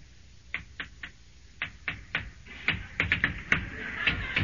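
A long run of sharp knocks on a door by Mr. Nugent, come to take Susan to the picnic, rapping in quick uneven bursts that grow louder and more insistent toward the end, with no voices.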